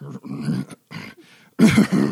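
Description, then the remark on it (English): A voice imitates the garbled roar of a worm monster, an awkward roar or chortle: several throaty, growling bursts with short gaps, ending in a louder, raspier surge. No words are spoken. “So the worm lets out like an awkward garbled roar or chortle, which shakes the room”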